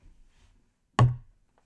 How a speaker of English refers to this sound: But yeah, bang that gavel.